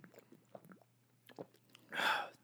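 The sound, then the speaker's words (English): Someone drinks Miller High Life beer from a can, with a few quiet wet gulps and mouth clicks, then a loud, breathy exhale of satisfaction. No one speaks. “You can hear me drinking this yeah. Crispy Miller High Life.”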